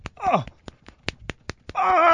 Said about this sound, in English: and you did that clicky thing with your fingers. Yeah, yeah. Is it the cartridges? Yeah, we were told there were cartridges in your fingers that would explode. It's where you slap your finger.